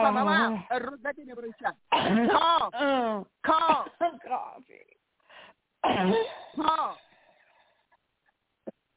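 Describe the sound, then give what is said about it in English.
A woman coughs and clears her throat in several fairly loud bursts, mixed with strained voiced groans, with short pauses between them and a brief final sound near the end, while she is being prayed over and told to cough it out. “Father, give her strength to cough in Jesus' name.”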